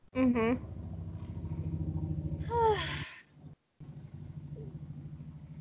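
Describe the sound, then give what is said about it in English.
A motorcycle engine drones steadily outside, a low continuous rumble, while a voice briefly speaks over it; the hum cuts out for a moment before resuming. “Sorry, I was just waiting for the motorcycle to go away.”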